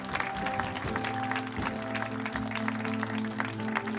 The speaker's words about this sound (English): There's somebody else in Montgomeryville. Come on, let's clap for them.